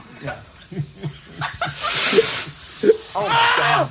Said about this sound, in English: It's so great that the screaming sound of terror is louder than even the explosion.